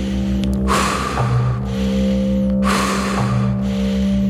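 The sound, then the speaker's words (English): Rhythmic drumming with steady, low repeating beats over a sustained humming drone, punctuated by loud, rushing swells that recur roughly every two seconds. No voices. “And listen to the sound of the drums.”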